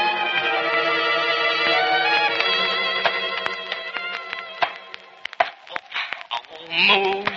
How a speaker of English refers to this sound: She comes back, and you'll hear her soft voice wailing in the darkness. Wailing in the darkness.